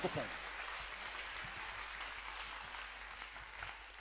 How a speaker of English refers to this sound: It's a good pleasure to clap your hands for the Lord.